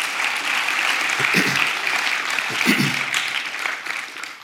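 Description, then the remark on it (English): A crowd applauds steadily for several seconds, a dense wash of many hands clapping at once, with a few faint voices underneath before it tapers off. “Why don't you clap for Isabella and Jim.”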